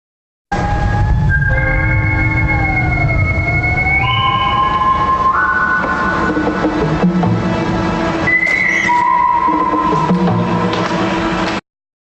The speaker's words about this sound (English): So I'll play a little more, but that was what got me. I mean, I don't know where in my memory that whistle was, that sort of jungly, tribal call and response whistle that, I mean, it hit me right in the heart.